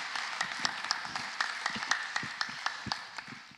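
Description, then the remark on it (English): A crowd applauds steadily, many hands clapping in a dense, continuous patter with a few sharper claps standing out, as a church audience applauds a woman's testimony before the sermon. “After all that applause, I can't wait to hear myself preach.”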